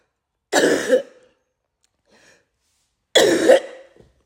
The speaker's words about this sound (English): In the mighty name of Jesus, begin to cough. I cough out.